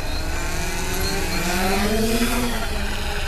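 A foot-long drone's motors whine steadily, their buzzing pitch rising as it is launched by hand from the bow of a boat and climbs 200 feet into the sky to fly above a whale, over a constant rushing noise with no voices.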